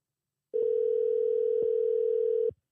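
A steady telephone line tone holds for about two seconds at a constant pitch, loud, as a call is placed to an interview guest. No voices are heard.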